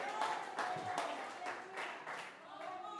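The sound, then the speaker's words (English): An audience claps their hands in a steady rhythm, the broad bursts of many hands blending with a murmur of voices and faint tones underneath. “Oh, somebody clap their hands.”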